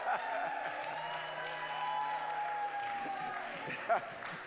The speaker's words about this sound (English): You all clap, like I said, give a clap for Jesus, but you said give a clap for summer.